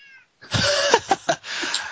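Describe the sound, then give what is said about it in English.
A loud cat meow stretches into a raspy, drawn-out yowl with a few sharp pulsing accents, after a brief faint high tone and a moment of silence. No one speaks. “Tell the cat stop making that sound when you open your mouth, if I may.”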